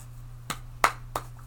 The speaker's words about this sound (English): I see you're shuffling cards over there. Would you like to describe the type of cards that you were shuffling?